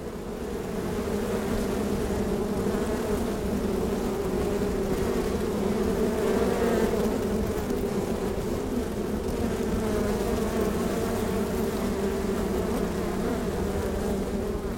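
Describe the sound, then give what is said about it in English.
A dense, steady drone of many bees buzzing inside a hive, picked up by microphones in the bottom of the hive, resonant, with a low humming tone that holds constant throughout and no voices. “We also put microphones in the bottom of the hive, which resonates with the buzzing of all the bees inside.”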